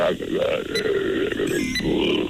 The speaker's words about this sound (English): What's beeping in the background? Is that his heart monitor?